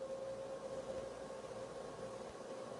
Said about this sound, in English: Oh, it's a tsunami siren, but it's probably just the testing.